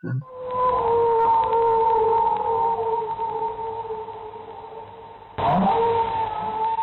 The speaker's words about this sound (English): Well, that sounds absolutely forlorn. It sounds like an animal in agony, but it might just be a whale. But I thought whales sounded more cheerful.